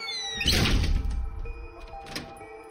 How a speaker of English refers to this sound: We stepped inside and he shut the door, entombing us in darkness.